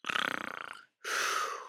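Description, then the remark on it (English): A voice imitates a snore: a rough, fluttering rattle on the inhale, a brief pause, then a long breathy hiss on the exhale, fairly loud and with no talking. “That's a poor snoring sound effect, but be funny if it was Hacksaw Ridge.”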